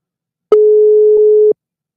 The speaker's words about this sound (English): He lives in Syria. I hate these fucking international dial tones.